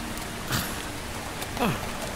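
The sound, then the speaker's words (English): Steady rain hisses over a low rush of wind, a continuous wash of noise at moderate level, with a couple of brief, faint voice-like murmurs rising through it. “Even as they left the valley, the sky darkened in the west before them, and wind and rain came up to meet them.”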